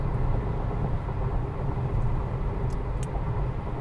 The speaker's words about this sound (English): it's coming up. First pocket of traffic coming up. Coming in hot.